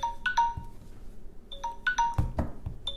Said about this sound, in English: Dang! Well, your alarm is mad. Yeah. Your alarm don't like the police.